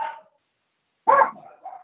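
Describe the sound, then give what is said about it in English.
A dog barks once loudly, followed by a couple of softer trailing yips, after a brief fading sound at the start. No one speaks. “All right, I got my dogs going on there.”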